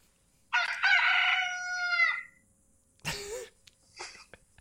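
A rooster lets out one loud cock-a-doodle-doo lasting about two seconds, followed by a couple of brief, breathy noises after it fades.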